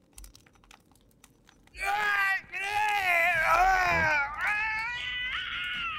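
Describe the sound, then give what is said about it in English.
After a few faint clicks, loud, anguished screams erupt from a room, wavering and sustained with a brief break, continuing to the end. “You hear these horrible, anguished screams from the room.”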